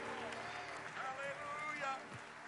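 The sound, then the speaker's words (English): A church audience applauds in praise with steady, dense clapping that fills the space, while voices call out and talk over the clapping throughout. “Oh, let's clap our hands unto the Lord, shall we?”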